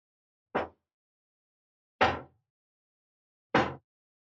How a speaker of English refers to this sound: Bang, bang, someone at the door.